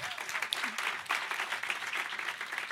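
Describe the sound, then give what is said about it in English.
A crowd applauds band members as they are introduced at a live show, a dense wash of many hands clapping at a fairly even level for a few seconds, with no voices standing out. “And round of applause for them.”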